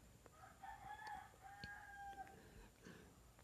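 A rooster crows, one long drawn-out cock-a-doodle-doo with rising and falling tones, fairly faint against a steady outdoor background hum.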